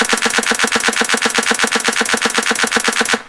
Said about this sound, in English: Let me use a sound that's a little bit more different. So it's bouncing back between the clap and that hi-hat. I'm going to add a third note in there. Take a listen.